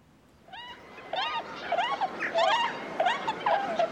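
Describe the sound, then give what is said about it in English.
A wild Bewick's swan, a winter visitor to the UK escaping the Russian Arctic winter, gives a run of soft, bugling honks, roughly seven or eight calls in quick, uneven succession, moderately loud with no one talking. “That is the evocative sound of the Buick swan, which escapes the harsh Russian Arctic winter by visiting the UK.”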